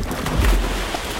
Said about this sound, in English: I land very loudly in the black water of the harbour with one hell of a splash.